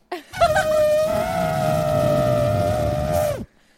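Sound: voice imitating an elephant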